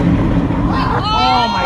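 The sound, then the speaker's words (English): A Pacific Ferries boat's engine rumbles steadily, then strains and revs higher partway through with a rising whine over low, churning noise and faint voices in the background, as the operator tries to free the boat stuck on rocks in shallow water under a train bridge, backing up and driving forward repeatedly. “the Pacific Ferries boat appearing to run up on the rocks in shallow water under the train bridge”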